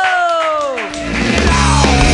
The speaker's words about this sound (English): Clap your hands together in a wild, slappy-like motion for Moon Show!